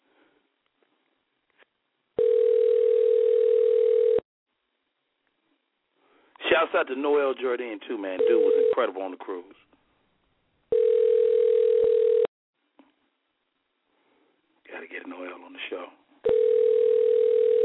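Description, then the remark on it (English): A phone ringback tone from an outgoing call repeats in steady two-second bursts with pauses between, loud, while men talk in the gaps between rings. “We are making a celebrity call right now.”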